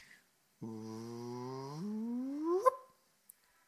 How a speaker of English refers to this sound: It's called a chirp. And it literally sounds like that. You can go on Google and say gravitational wave chirp, and that's what it plays at you. And when they get that whoop, that's when the two neutron stars have smashed into each other,